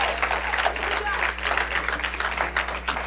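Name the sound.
audience applause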